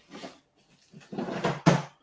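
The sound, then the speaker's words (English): A plastic storage drawer slides with a brief scrape, pauses, then slides again more loudly and shuts with a sharp knock, with no talking. “Well, Pip's got four sets of drawers. What do they look like?”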